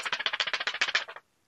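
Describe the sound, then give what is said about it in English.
Paper rustles and crinkles in a quick burst of about a dozen dry, crackling scrapes over roughly a second, then stops abruptly into silence. “I think you probably have paper sitting on your desk, so yes.”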